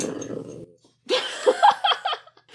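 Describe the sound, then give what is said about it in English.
A dog growls in a low, rumbling tone for about half a second. After a short pause comes a series of sharper, higher-pitched vocal bursts. “I hope that growl made it on mic.”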